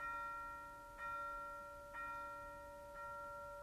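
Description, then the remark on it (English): A large town hall bell, its rope pulled by blind Captain Cat one morning, tolls four times at a steady pace about a second apart, each stroke leaving rich, sustained overtones humming between blows, heard alone without any voices. “Who pulls the town hall bell rope but blind Captain Cat?”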